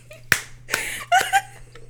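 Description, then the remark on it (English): A lone, thin hand clap snaps out quietly, weak and short, followed by some rustling and a brief voiced sound, with a low steady hum underneath. “your biggest failure was that hand clap.”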